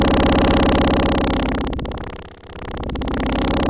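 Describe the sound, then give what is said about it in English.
A buzzy, sputtering bass-range synth tone, played without the Tube Screamer distortion pedal, with a dense stack of harmonics, pulsing in rapid, uneven flutters; it stays fairly loud throughout, dipping briefly in the middle before swelling back. No talking. “Takes like a weird kind of sputtery weird synth sound and turns it into this awesome, just mangled, distorted sound.”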